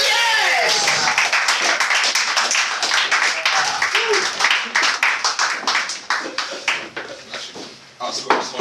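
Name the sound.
audience applause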